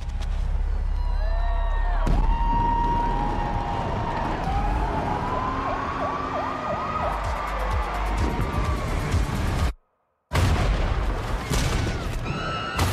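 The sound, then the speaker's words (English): New Year's Eve fireworks in Baltimore explode in a dense, noisy barrage, with sharp bangs and crackles mixed with whistling, siren-like tones rising and falling. The din breaks off briefly near the end before resuming. “It's New Year's Eve in Baltimore, so it's time for celebrations and fireworks.”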